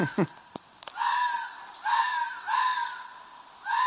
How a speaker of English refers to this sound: Special double issue sound effect two. Two foxes f***ing, and f***ing like they hate each other.